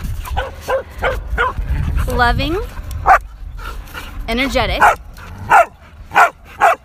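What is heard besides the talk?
dog barking and whimpering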